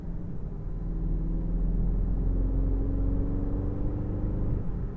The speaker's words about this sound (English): And when you've got a stonking sounding 4-litre V8 under the bonnet as well, then really, you can't complain at all, can you?